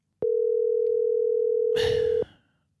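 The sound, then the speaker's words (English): A steady electronic tone of an outgoing phone call ringing holds for about two seconds, with a burst of rustling noise over its final half-second. No one speaks. “Let's call Travis and see what he has to say about that.”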